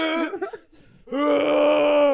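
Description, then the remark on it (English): A voice imitates a whale's cry: a short wavering moan, a brief pause, then a long, loud, sustained tonal wail holding steady in pitch with rich harmonics. “I was really hoping that it was just whales screaming.”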